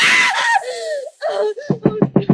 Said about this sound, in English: Mrs. Durant, what's wrong? Oh, Benson, come in. What on earth is wrong? Why were you screaming? Oh, Benson, I must have been dreaming. It was horrible.